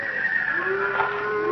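A horse wandering down a trail at night gives a long, drawn-out call, a steady tonal cry with a slight upward bend partway through, heard alone with no talking.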